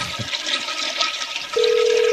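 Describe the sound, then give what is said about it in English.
A toilet flushes with a loud, steady rush of water. About halfway through, a constant electronic hum like a phone dial tone joins in and continues under the flush. “And like, I've been flushing, like, a bunch of fortune cookies down the toilet.”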